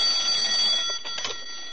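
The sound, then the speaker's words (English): A telephone rings with a steady, high-pitched electronic trill that holds for nearly two seconds, with a few brief rattling bursts toward the end and no voices. “Hansen answered the phone, listened for a few moments.”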